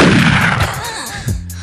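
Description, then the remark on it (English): A single loud, booming gunshot blasts out and rolls into a long reverberant tail, followed by a softer second thump near the end; no one speaks. “So the skater who blew it the hardest in pursuit of making it, hence you might need to pop off a gunshot, but I gotta go with Mickey Papa.”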